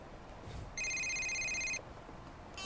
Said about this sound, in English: I was driving down the PCH at night. Typical rainy August evening. That's when the call came in.